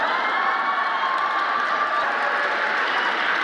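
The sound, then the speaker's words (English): A large audience claps and cheers steadily, a dense wash of applause mixed with crowd noise that holds at an even, fairly loud level throughout. “Let's clap for that.”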